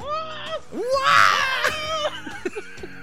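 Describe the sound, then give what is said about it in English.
A voice lets out a high, warbling mock scream imitating R2-D2 being chased, swooping up and down in pitch like a chattering robot, fairly loud, breaking into short chirpy bursts near the end. “I scream exclusively like R2-D2 when he's like getting chased by somebody.”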